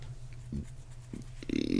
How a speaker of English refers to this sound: I was just saying okay because you just belched.